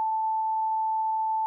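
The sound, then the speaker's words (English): A single steady electronic beep tone, a beep sound being tested, holds one pure mid-high pitch at constant loudness for about a second and a half, with no other sounds around it. “That was me testing the beep noise.”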